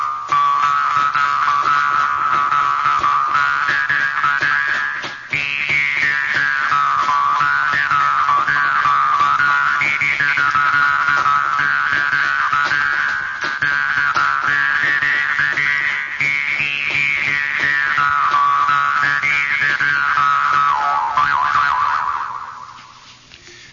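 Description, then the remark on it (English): A school theme song, played as a sports quiz question, comes through a heavy echo chamber effect, its single wavering melody smeared into a continuous, siren-like tone that holds steady and loud before fading out at the end. “Give me a little echo chamber in there.”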